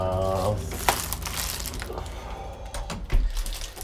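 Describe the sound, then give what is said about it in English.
Steady crinkling and rustling of the plastic packaging of a newly arrived package, ordered from the United States, being handled and pulled open in Japan, with sharper crackles near the end and a brief tonal hum at the very start. “All right, so it seems like my package has arrived.”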